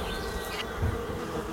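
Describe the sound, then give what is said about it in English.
A steady insect buzzing, like a bee or wasp, drones continuously throughout at moderate loudness, unbroken, with a slight low swell near the middle. “A crack. Buzzing. A scream.”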